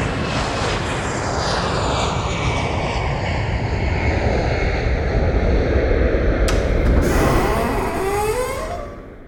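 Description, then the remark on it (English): A jet airplane roars past, a loud, steady rush of engine noise with a high whine that drops in pitch as it flies by, then fades away at the end. “I'm going to put us on the Sip Sudden Smoke Jet to go to the next place.”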